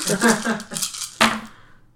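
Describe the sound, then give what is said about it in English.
Twelve dice are rolled, rattling and clattering across a hard surface in a quick burst of clicks, with one last sharp knock before they settle into quiet, fairly loud. “I'll try not to roll 4 ones out of 12 dice.”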